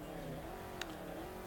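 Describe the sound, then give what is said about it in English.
A race car engine in a racing video game holds a steady, droning idle with a rough harmonic hum at the starting line of a quarter-mile race against an SLS, and a brief sharp click cuts through partway. No one speaks over the engine sound. “So what I need to do is get the revs right, and then off we go.”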